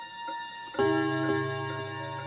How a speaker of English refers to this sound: My grandfather's railroad clock had struck the seventh hour of the afternoon not so long ago.